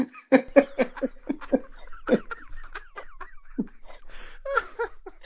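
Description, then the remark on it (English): Polly the Parrot, a parrot in a film, screams an F-word at Joe Piscopo in a quick, rhythmic string of loud, harsh calls, then breaks into warbling, gravelly screeches, with no one talking over it. “To have a parrot screaming an F-word at Joe Piscopo”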